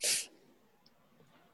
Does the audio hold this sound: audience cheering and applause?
no